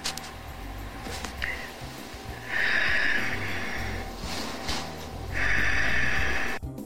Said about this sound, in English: She's having trouble breathing through the mask, it appears.